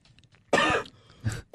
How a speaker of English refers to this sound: I couldn't cough 2 minutes ago.